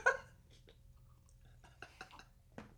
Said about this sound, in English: I'll take a sip to that. Take a sip, boy.